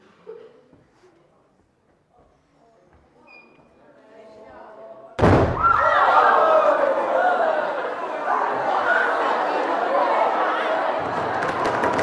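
Soft murmuring gives way to one sudden loud bang as a gas-filled balloon, touched with a hot wire, bursts and burns in a rapid flash, a very rapid burning reaction rather than an explosion, followed by a sustained roar of excited crowd chatter and cheering.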